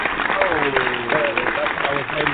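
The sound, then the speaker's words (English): Steady applause from a crowd at the close of the Hot Corner show fills the whole stretch, dense and continuous, with voices calling out and cheering mixed in over the clapping. “Clap it up, everybody.”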